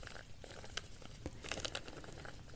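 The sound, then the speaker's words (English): Soft crinkling of a plastic bag that holds a comb, with irregular bursts of crackly rustling over a quiet background, gentle and continuous with no voices. “So I would recommend us trying a bit of plasticky sound.”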